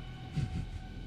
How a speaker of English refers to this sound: You hear that thunder?